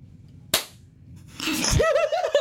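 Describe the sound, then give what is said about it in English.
A single sharp hand clap, made with eyes closed while trying to clap at the same time as another person, cracks out of near silence and fades quickly, followed about a second later by a wavering, pitched vocal sound with rising and falling tones. “We might fail at this, but this is where we close our eyes and we think that the person's going to clap at the same time as us.”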